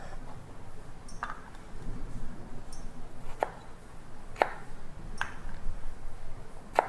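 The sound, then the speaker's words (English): A knife dicing Buddha's hand citron on a cutting board: four or five crisp, irregularly spaced taps over a low, steady background hum, with no one speaking. “While I dice up the other pieces.”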